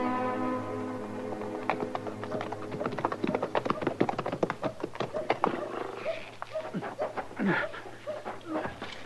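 horse hooves clip-clopping

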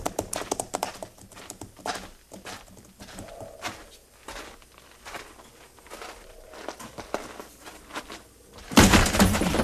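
horses' hooves clip-clopping

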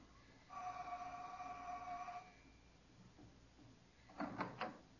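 door opening

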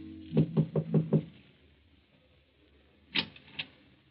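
knocking on a door

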